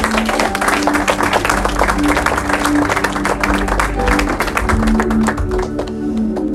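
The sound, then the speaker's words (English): An audience claps steadily for a speaker for several seconds, a dense, even patter of many hands, with a low murmur of voices underneath. “Oh, you can clap for me now.”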